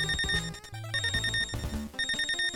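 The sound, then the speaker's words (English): A shrill, repeating electronic beeping alarm, like a video game's low-health warning, pulses steadily and loudly over busy game music with no voices. “In this game, when you start running out of health, the game makes sure that you are well aware of this fact by sounding an alarm that veteran players probably still hear in their nightmares.”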